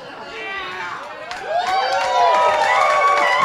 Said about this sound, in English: I mean, I don't know if you should be applauding that, but I appreciate it.